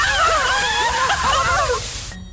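A water hose sprays in a loud, steady hissing rush for about two seconds, with wavering high-pitched squealing tones over the spray, then cuts off abruptly.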